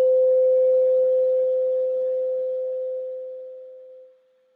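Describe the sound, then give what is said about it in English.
A meditation bell is struck once, its clear, steady tone ringing out and slowly fading over several seconds until it drops away into silence. No voices are heard. “And as I ring the bell once, try to stay with the sound one last time, all the way till it's one little point of sound.”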